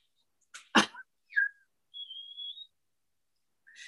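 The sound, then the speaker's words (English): A dog playing roughly with a squeaky toy: a sharp snorting huff, then high squeals and a drawn-out squeak, with short bursts of scuffling noise in between. No one speaks. “My dog going crazy on this toy.”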